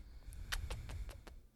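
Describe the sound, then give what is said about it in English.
A dog, Pluto, sniffs at the microphone, about six quick, breathy snuffles in a rapid, slightly uneven series over a low steady rumble, with no talking. “He might sniff the mic.”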